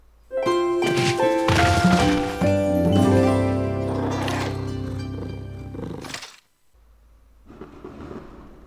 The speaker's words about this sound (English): Oh, there's some fireworks going off. I can't see them there.